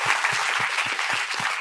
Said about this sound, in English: I think you guys should give yourselves a round of applause. This is pretty amazing.